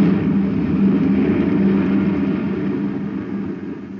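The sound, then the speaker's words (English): A space patrol maintenance truck's engine roars steadily as the driver speeds up to pass another vehicle, a loud, low rumbling drone under acceleration that holds for several seconds and eases off slightly at the end. No voices. “Speed up, Bob. We can pass him before he gets to the gate.”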